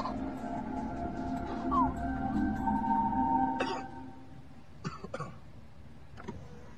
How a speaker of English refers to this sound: And the driver in the front seat coughs, so she rolls up the window to protect herself.